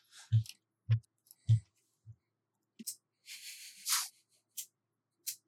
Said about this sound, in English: I rolled 1 dice. Okay. I got 2 successes.